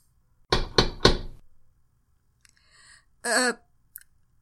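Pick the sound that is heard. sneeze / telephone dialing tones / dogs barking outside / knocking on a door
knocking on a door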